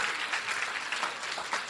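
People applaud steadily, a dense, even patter of many hands clapping at a moderate level, without pause, for the whole short stretch, for a child who shared about giving a shoebox.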